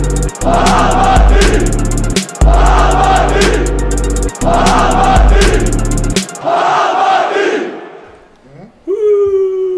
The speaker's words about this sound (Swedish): Jubel i bakgrunden.